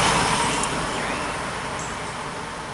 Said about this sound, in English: I hear a car. Notice it was not quiet when you heard it.